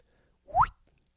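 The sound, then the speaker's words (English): A single water drip: one quick, hollow plop that sweeps sharply upward in pitch, moderately loud and heard alone against silence. “My sound effect was based on the word drip, but we're not going to see the word drip for two more episodes, right?”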